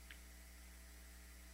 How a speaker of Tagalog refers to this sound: Okay, mukhang naghang siya. Actually, wala daw kuryente no sa Occidental Mindoro.